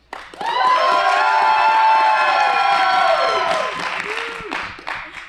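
A loud, sustained burst of cheering, led by a high, wavering whoop held for about three seconds over a noisy crowd roar, then trailing off into scattered shouts.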